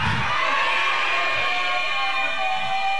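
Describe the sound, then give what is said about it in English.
An audience shouts "I'm a king" together in a loud, sustained roar of many overlapping voices, a dense wash of crowd noise that holds steady for a few seconds without pause. “Somebody shout aloud and say, I'm a king.”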